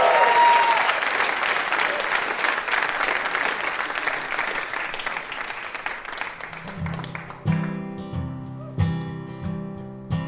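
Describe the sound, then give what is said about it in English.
A crowd claps steadily for VIP Steven Strogatz in dense, sustained applause that slowly fades, giving way around the seventh second to soft piano chords played in a gentle rhythm. “Have a round of applause for our VIP, Steven Strogatz.”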